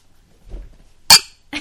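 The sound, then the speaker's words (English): Glasses clink together in a toast, a sharp, bright tap that rings out briefly, followed by a second quick clink, with soft handling rustle just before and no voices. “We should cheers.”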